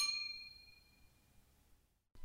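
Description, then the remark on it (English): Champagne glasses clink once in a toast, giving a bright, ringing chime that fades away over a second or so, heard alone without voices. “and a glass of champagne. Congrats, and cheers.”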